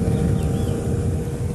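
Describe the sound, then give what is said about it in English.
A boat heading out passes by on the Gulf of Nicoya, Costa Rica, its motor droning steadily, a low rumbling hum with a faint tonal whine running through it, fairly loud and unbroken throughout, with no voices. “Somebody's in a boat heading out. You can hear them go by.”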